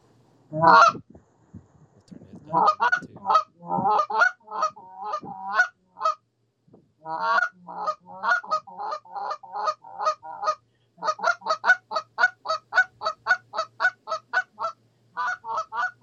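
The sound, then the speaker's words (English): A pair of geese honk repeatedly and loudly as they come in during a goose hunt, in rapid overlapping bursts with brief pauses, building into a steady rhythmic series of calls near the end. “If there's a pair of geese, so.”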